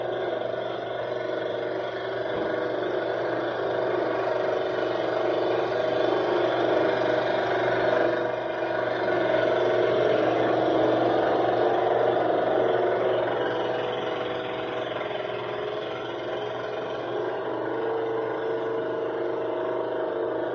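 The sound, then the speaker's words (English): A motorboat engine drones steadily on a river for the whole stretch, a loud, even mid-pitched hum with a slight rise and fall in intensity and no voices. “The river's down, but just enough to where I don't have to hike it, so we can take the boat.”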